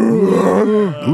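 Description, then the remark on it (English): A person imitates a dog that can almost talk: a drawn-out groaning moan with pitch that bends and slides, rising and falling, all within about a second. “A dog that can almost talk, but it can't.”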